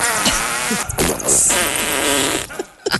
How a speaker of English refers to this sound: It's entitled Halloween Fart Sounds 8, The Wet Ones. This is the production level on the 8th version.